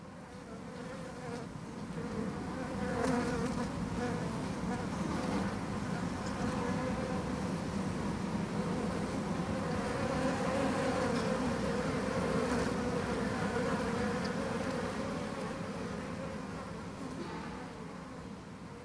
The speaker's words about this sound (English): So we're going to give this a go. I'm just going to put the microphone in now, and I'm just going to let the bees do their own talking for a moment or two.